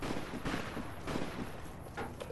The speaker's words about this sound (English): I hear the sign of gunfire off in the distance. I'm getting used to it now.